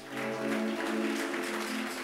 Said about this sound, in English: Oh, man of God, please come and sit down. Let's clap for man of God.